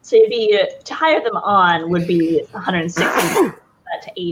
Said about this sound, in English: Bless you.